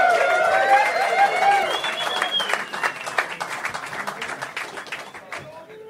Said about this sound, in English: Right, let's get them back out of here, folks. Round of applause for Kelly Slater and Mark Occhialupo.